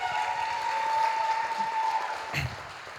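An audience claps in a steady round of applause, a dense wash of overlapping hand claps that holds at an even level, with a faint sustained tone running underneath.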